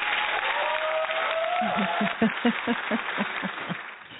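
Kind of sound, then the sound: crowd, audience round of applause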